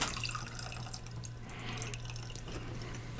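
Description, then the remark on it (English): A steady, gentle trickle of orange juice poured slowly into a glass on top of grenadine to layer a tequila sunrise, continuous for a few seconds with soft splashing, fairly quiet, with a low background hum and no talking. “Here goes the orange juice on top of the grenadine.”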